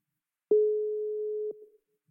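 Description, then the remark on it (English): A single steady electronic ringing tone of an outgoing phone call to someone in Lagos, a clear mid-pitched beep held for about a second, then silence, waiting to be answered. No one speaks. “We're ringing.”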